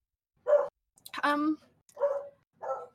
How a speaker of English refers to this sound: Sorry, my dogs. I don't know. I guess in a lot of ways, I always say that it's like my dogs. I have two beagles and they just bark nonstop. Do they need some attention? Are they sensing a disturbance in the force in terms of your mood?